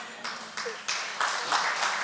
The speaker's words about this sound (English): I was not expecting that to get a clap. Praise God. I like the 11 a.m. service.